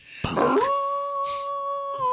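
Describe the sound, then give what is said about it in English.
A person lets out an imitation wolf howl: a rough, breathy start that settles into one long, steady, tuneful note held fairly loud for nearly two seconds. “you walked in right on the wolf howl.”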